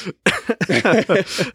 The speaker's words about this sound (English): you're gonna make me cough.